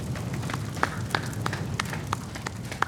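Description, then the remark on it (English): Steady hand clapping, about ten sharp claps at an even, unhurried pace, heard over a low rumbling background with no talking. “Should we clap? Yeah, let's face away, dude. Let him have this moment. We can still clap, though.”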